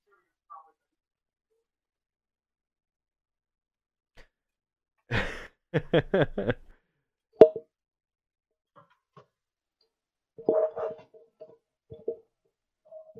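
Handling noise from equipment being fumbled with: a rough rustling burst, a few sharp knocks and clicks, then scattered faint ticking, with brief murmured vocal sounds and long quiet gaps between.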